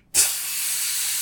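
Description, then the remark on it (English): A voice imitates a spray paint can being used to custom spray paint a Moogle in a video game, with a sharp, steady hissing "psssh" that starts abruptly after a brief silence and holds at an even level for about a second. “I do know that you could spray paint your Moogle, and that's terrifying.”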